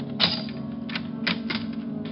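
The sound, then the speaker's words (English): Someone trying to get in uses a skeleton key in a door lock that any skeleton key fits, giving a few sharp metallic clicks and scrapes at uneven intervals over a steady low hum, with no voices. “I have one of those locks that any skeleton key would fit, and that was exactly what my visitor was using.”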